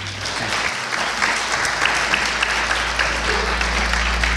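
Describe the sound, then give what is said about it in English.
A room full of people applauds several men at a talk about the Word of God, clapping steadily in a dense, sustained wash of applause that stays loud and even from start to finish with no talking over it. “Can we give them an applause?”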